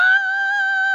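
A loud, dramatic shouted scream of the word "con", one long high-pitched vowel held steadily for about a second, with no other sounds around it.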